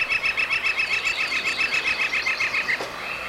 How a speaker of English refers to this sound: Here's the reverb chorus.